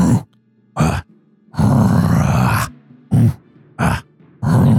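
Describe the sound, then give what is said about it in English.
A voice mimics a guttural, growling chant of gnolls, three words in Gnollish repeated as they move forward: harsh, low grunted syllables in a repeating rhythmic pattern of short bursts and one longer drawn-out growl, loud and with no ordinary speech. “And it's at that point you hear the yipping and the yapping begin to move forward, and you hear three words being chanted over and over again in Gnollish as they're beginning to move forward, almost in a growl.”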